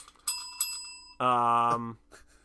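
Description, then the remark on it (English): A bicycle bell rings twice in quick succession, its bright tones lingering and fading, then a loud, buzzy sustained tone cuts in for about a second before the sound trails off. “The bell's dying.”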